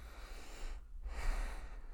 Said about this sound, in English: I keep breathing. It's because these questions are getting me like, God damn.